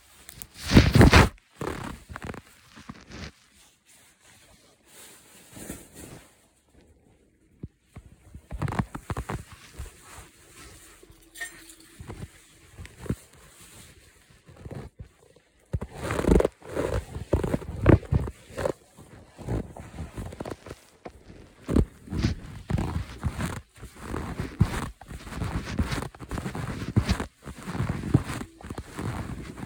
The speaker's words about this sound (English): You're gonna hear me walking, I'm sorry.